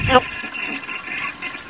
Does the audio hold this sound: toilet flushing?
yes